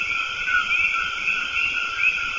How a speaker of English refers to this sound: There's always something going on. Insects buzzing, frogs peeping, birds calling to one another. This audio snapshot comes from El Verde Field Station in El Yunque National Forest, Puerto Rico